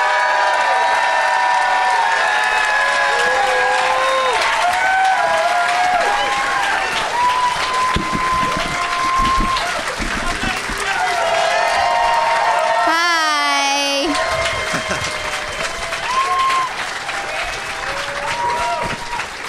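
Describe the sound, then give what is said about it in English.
A crowd applauds steadily and loudly for about twenty seconds as guests are welcomed out. Cheers and whoops rise above the clapping, with a brief high-pitched whistle near the end. “Please give it up for”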